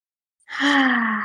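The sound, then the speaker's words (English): A single big, deep breath drawn in, loud and slightly voiced with a gasping edge, starting after a brief silence and holding steady to the end. “Take a big, deep breath.”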